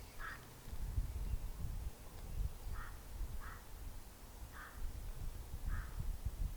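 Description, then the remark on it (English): Birds calling outdoors: about five short, harsh caw-like calls spaced irregularly over a steady low background rumble, with no one talking. “We need to listen to more birds.”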